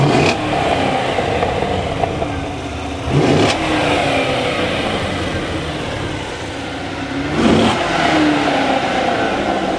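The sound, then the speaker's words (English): A sports car with a 7-speed manual and stock exhaust revs steadily, its tone rising and falling through a few throttle blips, with two sharper bursts standing out and no talking. “Stock exhaust.”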